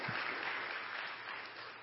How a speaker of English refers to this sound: Would you join? I know you've said thanks. Would you just join and give them a round of applause? They have done amazing things.